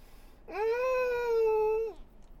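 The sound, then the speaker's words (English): A single long, drawn-out cat meow, steady in pitch and fairly loud, rising at the start and dropping away at the end, with no talking around it. “the Puckle is making the cutest noises”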